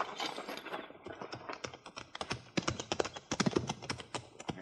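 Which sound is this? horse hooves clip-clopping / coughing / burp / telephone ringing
horse hooves clip-clopping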